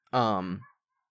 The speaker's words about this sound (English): Dog's barking.